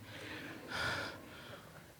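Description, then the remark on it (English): Heavy, labored breathing, a few rasping breaths in a row with the middle one the loudest and harshest, from someone winded after playing soccer. No talking. “I'm having some trouble breathing.”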